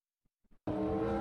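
A few faint clicks, then a 2022 Formula One race car engine suddenly bursts in very loud, a harsh high-pitched revving roar that holds steady to the end.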